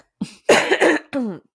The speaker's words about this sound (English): I mean, let me cough. Hang on.